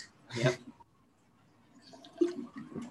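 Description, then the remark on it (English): Two quick sips of water taken by two people, one near the start and another later, with soft liquid slurping and quiet gaps in between and no talking. “I like how we both just took a sip of water.”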